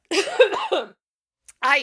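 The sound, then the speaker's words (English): A person with a cold coughs: a rough, voiced hack lasting most of a second, then after a short pause a brief sharp burst and a second throaty cough. “I'm gonna cough, though.”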